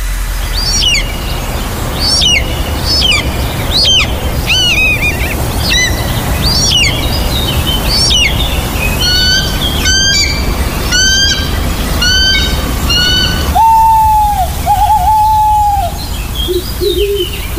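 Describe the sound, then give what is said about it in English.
Birds of prey at York Bird of Prey Centre, Burn Hall, near York, call and squawk in a quick series of sharp, repeated cries, followed near the end by a couple of lower, drawn-out calls, all over a steady low background rumble. “To experience sounds like these, book a great family day out to York Bird of Prey Centre.”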